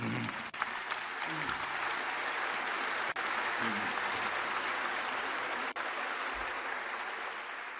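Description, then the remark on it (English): Sustained applause from a large audience thanking a guest who is asked to stand up: a dense, steady wash of clapping at an even, fairly loud level, with faint murmurs of voices underneath. “I think the crowd would like to say thanks.”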